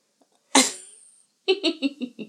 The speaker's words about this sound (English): I caught … mid-yawn.